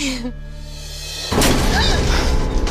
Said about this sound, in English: Trevor busts through the door.